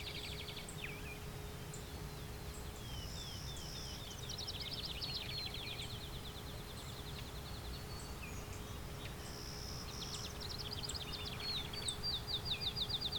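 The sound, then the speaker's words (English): High, thin, buzzy calls from cedar waxwings that have just landed nearby repeat in scattered bursts throughout, set against a steady low hum and soft outdoor background noise, with no one speaking. “Cedar wax wings just land nearby.”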